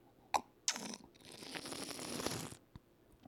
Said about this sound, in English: I dramatically sip my coffee.